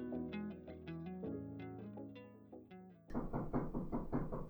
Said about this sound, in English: Hello? Okay, somebody's knocking on my door. I'm gonna go check it out.